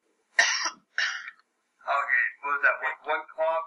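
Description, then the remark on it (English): A brief cough comes first, two short harsh bursts of breath in quick succession, then a voice starts speaking right after. “Okay, what was that? One cough?”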